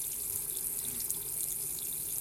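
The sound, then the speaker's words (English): Water runs steadily from a tap into a sink as hands are washed with soap and water, a continuous hissing splash with bright, airy highs and no pauses or talking. “Clean any surface on which the virus could linger with a common household disinfectant, and clean or wash your hands with an alcohol-based hand rub or soap and water.”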